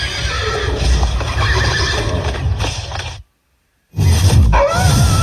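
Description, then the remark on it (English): A horse whinnies loudly, with the steady clatter of hooves clip-clopping underneath. The sound cuts out briefly for about half a second, then the hooves and a rising neigh return. “I listen to country music in the barn because it makes the horses dance.”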